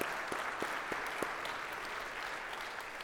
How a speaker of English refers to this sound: Well, give a round of applause to all of these people who are involved in VBS.